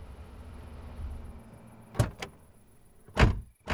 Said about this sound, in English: It had been dark for several hours when the trucks pulled up to the cabin.